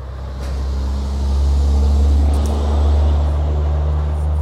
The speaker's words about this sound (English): Excuse the big diesel truck.